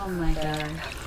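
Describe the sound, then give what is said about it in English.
A drink being poured into a glass over ice, a short glugging pour that rises slightly in pitch, with a low voice murmuring underneath. “See, that's what I'm telling you happened to me when I was pouring your drink.”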